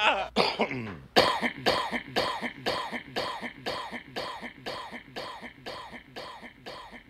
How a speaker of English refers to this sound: Cough delay. Infinite cough.